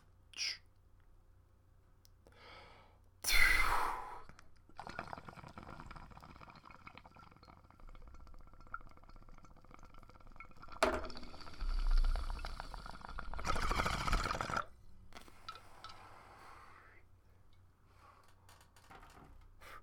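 Someone takes a hit from a bong: low, steady bubbling gurgles, broken up by a few loud, breathy bursts of inhaling and exhaling, with no talking.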